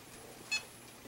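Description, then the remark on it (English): A single short, high-pitched electronic beep from a woman's meter going off, sounding once against a quiet, hissy background with no one talking. “Who's that? Who just beeped?”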